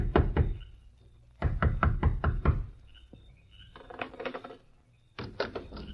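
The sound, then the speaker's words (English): Loud knocking on the wooden door of a sheriff's home late at night, in three insistent bursts of rapid raps separated by short pauses, with a faint rattling sound between the bursts. “Although it was late at night, the door of the sheriff's home echoed with a loud knock.”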